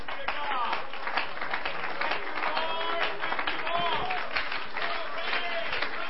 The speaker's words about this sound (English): Let's clap our hands in Jesus.